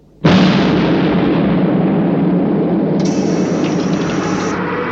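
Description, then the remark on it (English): A sudden, loud explosion as robbers blow open a vault door bursts out of near silence, then a heavy roaring rumble of blast and debris carries on for several seconds, with no voices. “the robbers were ready to blow the vault.”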